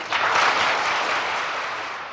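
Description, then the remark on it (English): An audience in the National Philharmonic Hall in Warsaw applauds to greet Willis Conover: a dense, steady wash of many hands clapping, loud at first and tapering slightly over about two seconds, with no voices standing out. “It is I who should applaud you for the warmth of the greeting you have given me here in Warsaw.”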